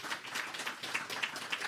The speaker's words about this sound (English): Round of applause to all of them.